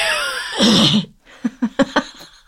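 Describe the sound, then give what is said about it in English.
A loud, drawn-out yawn with a breathy, falling tone lasting about a second, followed after a short pause by four quick, soft vocal bursts. “I gotta start yawning. You do. Cover your mouth.”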